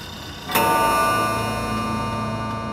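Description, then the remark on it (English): A single deep, hollow hour bell toll strikes once and rings on, its dull metallic hum lingering and slowly fading over a faint background, with no voices. “Yet he spoke before the hour bell sounded, which it now did with a deep, dull, hollow, melancholy one.”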